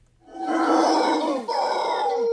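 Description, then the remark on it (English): A howler monkey in the Amazon jungle gives a loud, sustained roaring call with a throaty, rasping tone and strong harmonics, breaking briefly before continuing, heard alone with no talking. “There are also howler monkeys there, and howler monkeys are incredibly loud.”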